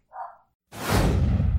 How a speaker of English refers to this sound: So sometimes dogs interrupt, and we have to halt the recording because of them, and here's some of those. And welcome. Wait, hold on. I hear the dogs.